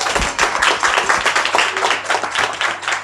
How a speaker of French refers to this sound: Cette soirée, c'est un peu historique parce que c'est la première fois les femmes qui bossent dans les cafés sont dans la même salle au même temps. So, moi, j'ai trouvé ça très fun et incroyable. So, je veux juste dire un petit applaudissement.